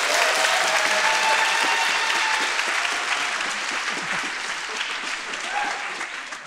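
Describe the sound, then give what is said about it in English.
Sustained applause from a large audience, a dense steady wash of many hands clapping at once, staying loud throughout and easing slightly toward the end, with no speech over it. “Thank you for the easy clap there.”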